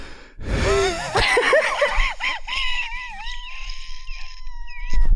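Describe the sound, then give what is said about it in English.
A harsh cough bursts out, then turns into a long, high-pitched wheezing whistle that wavers before settling into a thin, strained tone. No one speaks. “You gotta watch out for that cough. It hits the back of your throat.”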